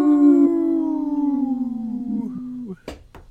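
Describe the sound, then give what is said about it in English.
A dog lets out one long, loud howl that holds steady and then slowly sinks in pitch over about three seconds, followed by two short, sharp bursts of noise. “Woof. That's a big woof.”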